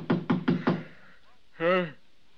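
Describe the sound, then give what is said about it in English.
Four quick, firm knocks on a hotel room door in a steady rhythm, loud, followed after a brief pause by a short questioning voice. “Just a minute, I'll get up and open the door.”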